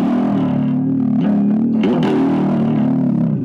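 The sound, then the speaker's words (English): A distorted electric guitar growls in a low, rumbling tone, imitating a cat's purr with a steady, gritty buzz that wavers slightly in pitch for a few seconds. “And then the purring.”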